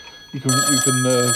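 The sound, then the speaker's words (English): A telephone starts ringing loud, with a steady electronic tone that pulses in short bursts and carries on without a pause. “Oh, here's the phone now.”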